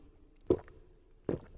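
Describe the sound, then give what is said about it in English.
Two heavy, wet gulps of flat water being drunk, spaced under a second apart, each a low, thick swallowing thump over faint background hiss, with no talking. “That's some intense gulping.”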